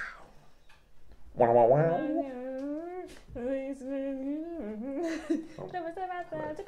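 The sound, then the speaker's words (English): A dog makes a long, wavering whining noise, sustained for several seconds with rising and falling pitch and a couple of brief breaks. “Dog! I'm so sorry. Dog, you were doing so well. I forgot he was even there, to be fair.”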